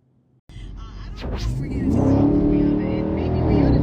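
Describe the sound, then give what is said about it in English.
A 2020 Dodge Charger Scat Pack engine roars to life after a brief quiet moment, then revs hard into a loud, deep, sustained growl that stays powerful until the end. “I'm finna give a quick car vlog on my thoughts about the 2020 Dodge Charger Scat Pack, man.”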